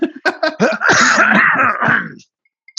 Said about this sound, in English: a little cough just come on me now.